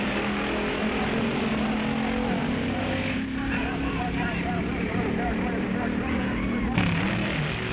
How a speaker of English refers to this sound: A Thunderbird and a Corvette in the sports car class.